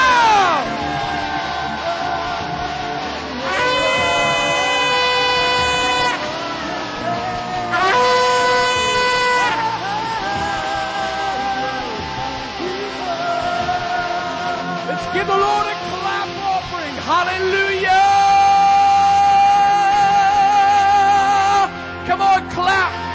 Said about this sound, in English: One more time, a shout on three. Ready? All you got. One, two, three, shout! Hallelujah! Shout your hallelujah!